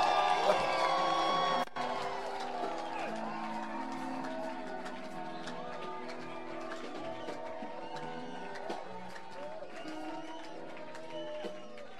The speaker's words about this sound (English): Shout I receive, shout I believe, shout I receive. Clap your hands and make a joyful noise unto the Most High.